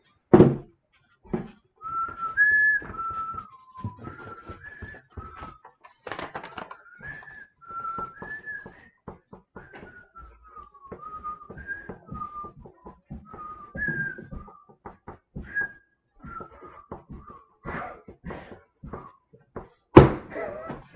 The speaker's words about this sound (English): The actual theme is much longer than that. I had it downloaded for you, but you whistled, so you did great.